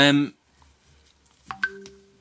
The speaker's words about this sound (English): Whoops, who's emailing you? It was WhatsApp. Who's WhatsApping you? I don't know, I'm not checking it because I'm a profesh. You're not, otherwise it wouldn't even be going off.